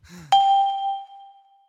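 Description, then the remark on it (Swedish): A household refrigerator chime rings out as a single bright electronic ding that fades slowly over more than a second, following a brief murmur of voice just before it. “Det är min flickväns kylskåp.”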